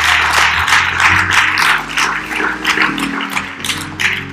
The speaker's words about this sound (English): Let's give our great God a round of applause on this morning.